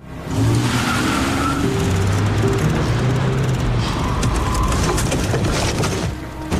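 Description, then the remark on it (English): A car's tires screech loudly and continuously for several seconds as the car blocks a truck's path, the shrill squeal wavering in pitch over rough engine and road noise, before cutting off abruptly. “Frankie pops on a hockey mask for a disguise and blocks the truck's path with the car”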